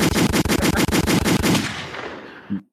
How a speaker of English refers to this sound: Listen, man, hang on. Let me give you some more gunshots.